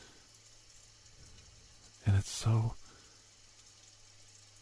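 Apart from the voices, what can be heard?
rain falling outside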